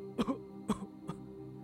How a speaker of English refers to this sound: Sand said nothing, only blew smoke into the lab coat's face, causing the man to cough.